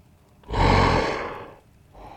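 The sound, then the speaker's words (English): A werewolf lets out a loud, rough, breathy snort and growl lasting about a second, then tapers off before a second quieter huff begins; no talking. “Are they... werewolves? Maybe they're still them inside.”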